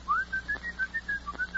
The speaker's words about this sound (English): When Joan Blondell comes in, just as a signal, you whistle like this.